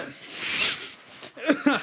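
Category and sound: human body sound, cough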